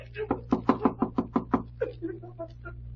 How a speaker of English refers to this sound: Well, guess it won't hurt to rap on the door.